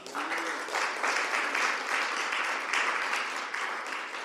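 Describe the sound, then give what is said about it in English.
An audience claps for Jesus, a dense, sustained wash of many hands with small swells in intensity, continuing without pause and no voices standing out. “Can somebody clap for Jesus?”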